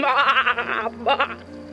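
sheep bleating

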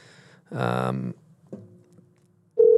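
telephone call ringing

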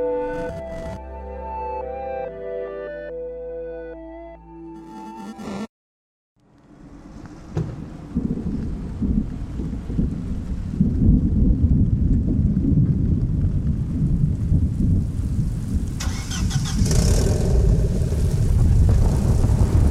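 rain with thunder

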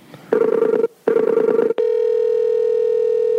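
phone call ringing tone

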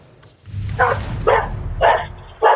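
dog barking

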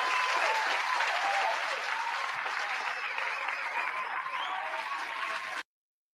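applause sound effect

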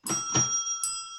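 bell chime sound effect

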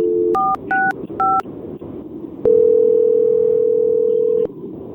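phone ringing

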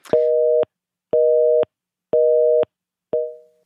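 phone line busy tone

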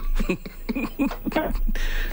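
phone line breaking up

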